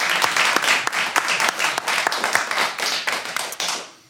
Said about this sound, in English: There you have a big round of applause for doctors.